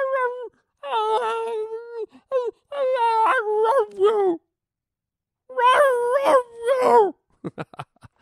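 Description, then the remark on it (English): A dog howls and moans in several drawn-out, wavering phrases that rise and fall almost like the words 'I love you', separated by brief pauses and ending in a few short, sharp yelps. “And these people, you know, they're such dog fanatics that they think their dog is literally saying, I love you.”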